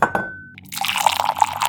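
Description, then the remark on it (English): A glass rings with a short clink, then liquid is poured into it in a steady splashing stream that continues to the end, with no voices. “These don't come pre-poured, huh?”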